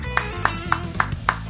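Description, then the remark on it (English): Five sharp hand claps in a steady, slow rhythm, evenly spaced about a quarter second apart, each a crisp mid-pitched smack over a low background hum. “Is that starting a slow clap?”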